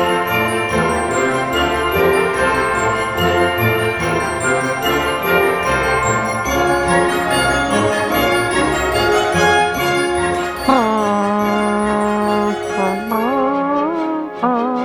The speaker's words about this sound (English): This one kicks it up a notch with the brass, too, so we'll listen to the end. Okay. Hear all the bells, just beautiful.